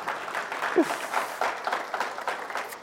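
An audience applauds steadily, many hands clapping in a dense, continuous patter that fills the room at moderate volume, with a brief murmur of voices mixed in.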